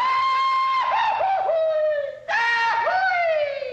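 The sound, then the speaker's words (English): A loud, high cartoon yell rings out in two long warbling bursts, its pitch wobbling and dipping in quick yodel-like breaks, with a brief drop between the bursts. “Oh, and Steve, one of the episodes utilizes the Goofy Yell.”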